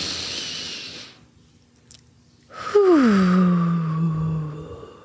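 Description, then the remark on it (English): A long airy breath in through the nose, a short pause, then a drawn-out exhale through the mouth that turns into a voiced sigh, its pitch sliding downward as it fades. “In the nostrils. And out through the mouth. One more time.”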